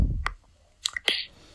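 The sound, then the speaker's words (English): Wet eating noises of a turtle fast gulping a purple or pink fruit, swallowing without chewing: a few short squishy smacks and clicks, with a low thump at the start and quiet gaps between bursts, no talking. “is not even chewing, bro. He's just fucking swallowing”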